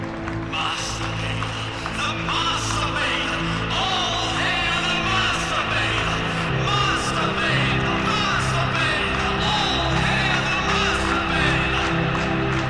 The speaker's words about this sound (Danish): Børnene, mobberne og de andre badegæster råber ud.